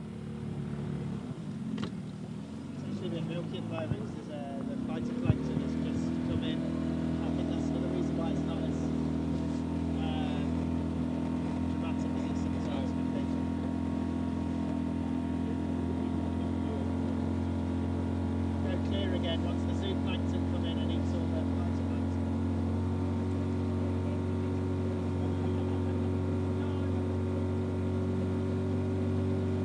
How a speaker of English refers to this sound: So we're on the other side of the sound now, and you might have heard the boat, and the captain of that boat was our own